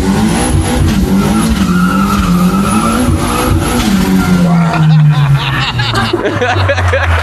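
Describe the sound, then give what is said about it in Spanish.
A loud car engine revs hard and then drops in pitch, with high tire squeals and skidding as it speeds past, and indistinct voices in the background. “Está homologado ese y tiene, coche.”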